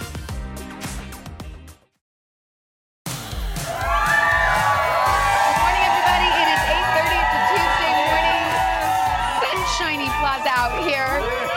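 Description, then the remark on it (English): A large outdoor crowd in warm, fine weather cheers and shouts continuously, many high excited voices whooping and screaming together at full volume, following a brief burst of other sound and a moment of silence. “Oh, what a good crowd. It's beautiful out here.”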